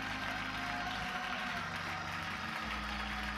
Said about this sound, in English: Would you clap your hands and would you praise him?